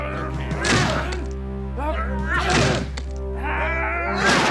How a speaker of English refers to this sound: in the name of Herod the King, I command you to open this door. There's no answer. And you know your orders. Break it down. Ready, men?